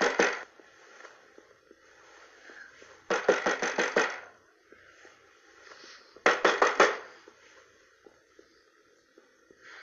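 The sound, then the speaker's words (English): Two loud bursts of rapid knocking on a door, each about six or seven quick raps, separated by a few seconds of quiet room noise. “Someone keeps knocking on the door and won't let her sleep.”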